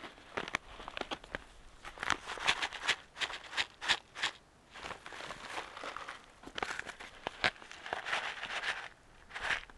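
Crinkly plastic packaging rustles and crackles, a foil food pouch with an oxygen absorber inside being handled and torn open in irregular bursts of crunching, crackling noise with no talking.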